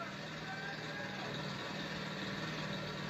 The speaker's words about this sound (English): That is a gas generator. Yep, it be.